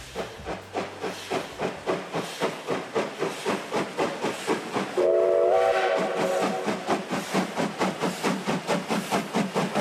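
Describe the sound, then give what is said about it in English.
An old steam locomotive chugs in a steady, rapid rhythm of hissing puffs, and midway its whistle sounds a loud, sustained chord for about a second and a half before the chuffing continues. “It's an old steam locomotive, and I kind of love it.”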